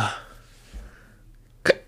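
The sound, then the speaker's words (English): A muffled low gulp, like a stifled burp, followed by one sharp hiccup near the end, with a soft breathy sound at the start and no talking. “It was like a hiccup and burp that had to come out that wouldn't.”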